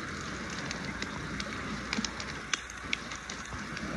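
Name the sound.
crackling campfire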